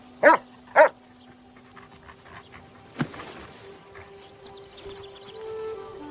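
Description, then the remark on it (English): The dog Bailey barks twice in quick succession, loud, in a film scene, then falls silent while a steady drone of crickets or insects continues in the background, broken once by a brief sharp knock. “Still think you got one in your boss, dog?”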